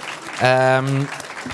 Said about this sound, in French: D'ailleurs, j'en profite pour saluer ceux qui nous ont invités, l'été du podcast, le Grand Contrôle et Acast, qu'on peut applaudir d'ailleurs si vous voulez bien.